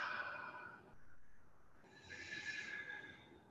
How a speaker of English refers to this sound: So I want you to close your eyes. And we're going to do that deep breathing. Go breathe in. And then as you blow out, say to yourself, relax.